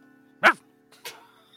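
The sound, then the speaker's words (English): A dog named Dash barks twice in quick succession, a sharp, loud first bark followed by a softer, shorter one about half a second later, with quiet background in between. “he barked.”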